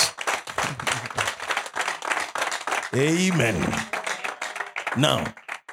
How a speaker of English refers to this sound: Can you clap for me?